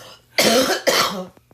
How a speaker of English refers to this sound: I have a cough, you guys. I apologize.